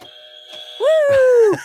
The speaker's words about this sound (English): And we got a buzzer. And we got buzzers. Hit it.